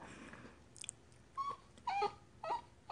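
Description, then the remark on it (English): A dog whines in a series of short, high, nasal whimpers, about four rising cries spaced roughly half a second apart, with no talking. “My dog whining is exactly how I feel about that song.”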